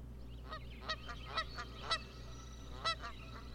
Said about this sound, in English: It has an 11-second intro for a goose noise.